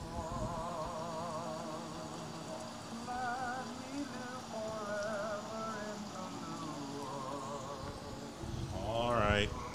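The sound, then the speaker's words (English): Steady rain falls outdoors in a continuous, even hiss, with wavering buzzy tones drifting over it and a brief louder swell near the end. “Time to come in out of the rain.”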